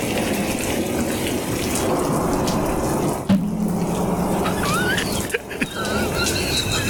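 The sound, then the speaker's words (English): Steady rain pours down in a dense, continuous hiss, fairly loud, with a brief thump partway through and a few faint high squeaks near the end. No one speaks. “It's raining right now.”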